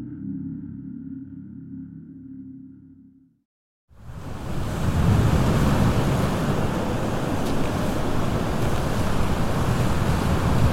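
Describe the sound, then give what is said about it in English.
A low steady rumble cuts out into a brief silence, then loud, continuous roaring surf, with deep waves crashing against a rocky shore on a bay and wind noise layered over it, recorded on a body camera as a man walks toward the shore. “The video shows him walking toward the rocky shore under deep waves, with nothing but a wall of white visible across the bay.”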